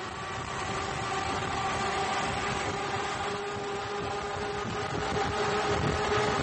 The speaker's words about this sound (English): I have a sound clip of the Liberty V-12, a 27-liter V-12 World War I airplane engine, and that's used in these boats.